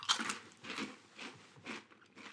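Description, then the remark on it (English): Crunchy chewing of a puffed masala crunch snack chip like Cheetos: about five muffled, crackly bites in a steady rhythm, roughly two per second, fairly quiet with no talking. “Ooh, they're like Cheetos.”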